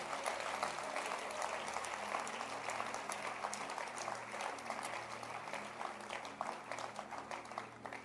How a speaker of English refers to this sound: Oh, clap your hands for them.